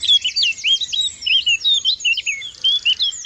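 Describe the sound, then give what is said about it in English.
A dense dawn chorus of common garden and woodland birds in Phoenix Park in early June, many songs overlapping in a steady stream of bright chirps, trills and whistles, lively with no pauses. “It's now early June and the dawn chorus is in full swing.”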